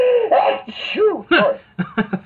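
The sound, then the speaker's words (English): A loud sneeze preceded by drawn-out, wavering breathy gasps as it builds, followed by a few short voiced sniffs and sounds. “I really, really, really, I have to sneeze.”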